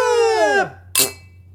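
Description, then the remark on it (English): A drawn-out voice slides downward in pitch and fades, then one bright clink of beer glasses rings out in a single toast and decays quickly into near silence. “All right, we're doing our special one-off cheers.”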